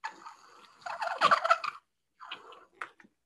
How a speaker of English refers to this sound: We'll see if we get a Velociraptor sound one more time.